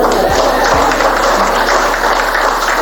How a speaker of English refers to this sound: She's from Hampton, but we're newlyweds. Oh, y'all are supposed to clap.